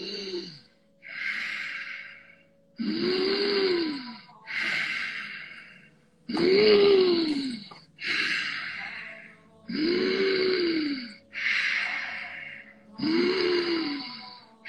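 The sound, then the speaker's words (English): Deep, forceful breaths during a paced breathing exercise alternate steadily between loud rushing inhales and exhales, each exhale carrying a faint voiced hum, repeating in an even rhythm of about one breath cycle every two to three seconds. “You can control the speed that you're breathing in and out.”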